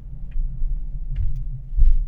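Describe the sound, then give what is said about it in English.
A car engine, started remotely in a car park, turns over and settles into a low, steady idle, heard from a distance, its rumble swelling slightly near the end along with a few faint clicks. “Well, I just started it. So you started it for that far away.”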